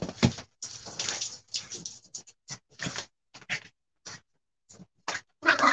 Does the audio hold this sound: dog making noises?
yes